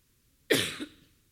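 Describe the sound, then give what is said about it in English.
A single fairly loud cough from a speaker who has run out of water bursts out abruptly and trails off with a brief second push of breath, then quiet follows. “And I just ran out of water, so hopefully I don't cough all the way through this.”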